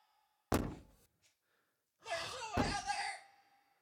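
A single heavy thud on a door rings out close by, followed after a pause by a rougher burst of noise with another solid knock inside it.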